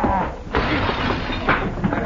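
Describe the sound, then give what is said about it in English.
A plate glass mirror shatters loudly with a sharp crash, followed by a dense spray of tinkling shards and a second burst of breaking glass, harsh, filling the whole moment. “There goes my plate glass mirror.”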